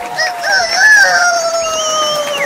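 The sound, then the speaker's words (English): A person does a loud, drawn-out imitation of a rooster's crow, a single sustained call with rising and falling pitch lasting a couple of seconds. “Your special rooster crow.”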